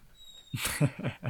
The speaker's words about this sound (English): god damn it, my fucking cat.